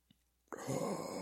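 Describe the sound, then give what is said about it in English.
A Darth Vader breathing sound effect: after a brief tick and near-silence, a loud, airy, hissing breath starts abruptly and holds steady to the end, with a rough, mechanical rasp. “Vader breathing.”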